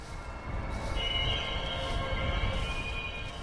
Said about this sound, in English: An orange BNSF engine squeals by a little more than 1,000 yards from the scientists as they prepare fish traps and other sampling gear.